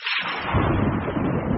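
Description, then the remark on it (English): A sudden sharp thunder crack bursts out, then spreads into a loud, steady rumble of rolling thunder that fills the rest of the short clip, with no voices. “The end of the universe, or we have been struck by lightning.”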